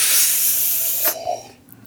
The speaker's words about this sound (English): Okay. Anything to wash down the taste. And I got some here and 3, 2, 1 slurp.